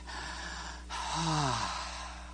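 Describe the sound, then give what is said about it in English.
A single deep breath demonstrating normal breathing: a long airy inhale, then a louder exhale that ends in a brief, falling voiced sigh, with no talking. “Room to breathe, that times of refreshing might come from the presence of the Lord and bring me back to what? Normal breathing.”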